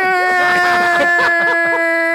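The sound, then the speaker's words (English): A person imitates the anguished yell of the character Ghost from the show Power, holding one loud, strained wail for about two seconds without a break. “Whenever Angela got shot and that stupid, retarded yell that Ghost did after she got shot.”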